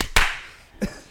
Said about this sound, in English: Clap, clap, clap.